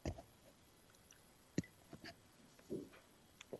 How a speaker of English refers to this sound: Take a sip of my tea.